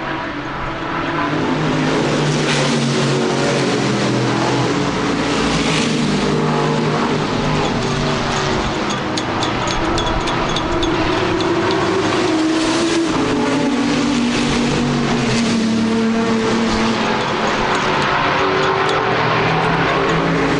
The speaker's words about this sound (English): That's the sound of thousands of horsepower and millions of pounds. In fact, I'm standing just at the back of the pit area, and I can hear the cars clearly all the way around the circuit, even though the furthest point is nearly 2 miles away.